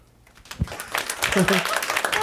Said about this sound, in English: How many people, by round of applause, still utilize DVDs?